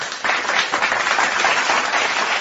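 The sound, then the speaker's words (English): A steady round of applause from a crowd for a co-creator of a show segment called Let's Do, with dense overlapping claps holding at an even loudness for a couple of seconds and no voices over it. “So everybody give her a round of applause.”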